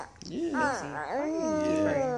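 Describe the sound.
A toddler girl babbles in a sing-song voice, pitch sliding up and down in a few wordless arching sounds that run for about two seconds, clear.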